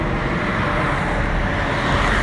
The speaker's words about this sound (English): All right, gotta hop in this car before I get smashed by this other car right here.